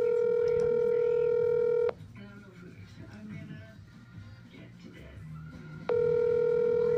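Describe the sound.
A phone call to a friend rings out over a speakerphone: a loud, steady electronic ring tone, a pause filled with quiet background voices, then the ring starts again.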